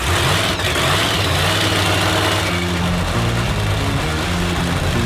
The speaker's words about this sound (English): Milwaukee, start your engines.